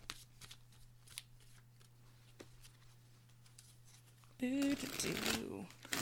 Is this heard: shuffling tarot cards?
yes